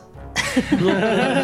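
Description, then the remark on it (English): A person vocally mimics a rough, hacking cough of a giant panther-like beast, like an animal retching up a hairball, with broad raspy bursts and throaty sputters, lasting just over a second. “It makes sort of like a hacking cough.”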